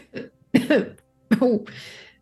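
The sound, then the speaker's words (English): A few throaty coughs in quick succession, the middle ones loudest, followed by a long breathy exhale at the end, as someone returns to consciousness. No talking. “with a few coughs and some deep breaths, Bijou returns to consciousness”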